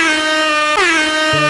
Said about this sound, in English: There you go. That's an air horn. That's not a buzzer.